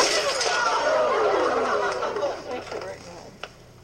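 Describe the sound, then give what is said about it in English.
A hammer smashes open a clown-faced coin bank named Bernie with a loud, bright crash, and coins clatter and jingle as the noise slowly dies away, ending with one sharp clink. “I got to break you open. It's a matter of life. Is there really $100 in there?”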